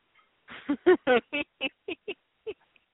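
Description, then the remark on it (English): A pet bird named Pony Bird screams in a rapid series of about nine harsh, loud squawks, irregularly spaced, with no talking in between. “Pony Bird, why are you screaming? No, you're not getting out.”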